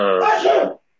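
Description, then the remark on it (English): A single loud sneeze lasting under a second, a voiced, drawn-out build that bursts into a rough, breathy release and cuts off abruptly. No one speaks during it. “God bless you, whoever that was.”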